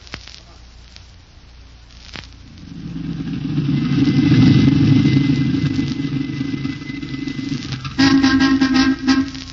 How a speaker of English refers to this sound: Shut off the engine.